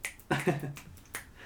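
A few sharp finger snaps, given in place of clapping for a panel, come at an uneven pace, crisp and moderately loud, with a brief murmur of voices mixed in among them.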